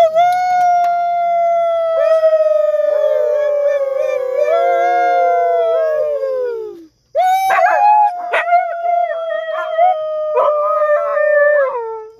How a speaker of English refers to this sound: Can you give us a howl real quick for the viewers? Leto, will you give us a howl? Yeah. Yes, sir. We got our wolf. That's Leto.